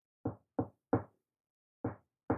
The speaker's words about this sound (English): And I'm going to actually go to the very first apartment on the lower level. Okay. And I'm going to do a specific knock on that door.